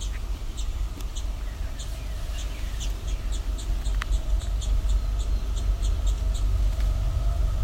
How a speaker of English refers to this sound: I think these might be young towhee